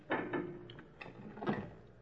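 A few sharp mechanical clunks and clicks from a door as a man turns and latches its lock again after letting police officers in, spaced unevenly over about two seconds, with quiet between them.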